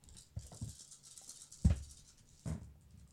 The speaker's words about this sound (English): So now we're going to roll the remaining dice here.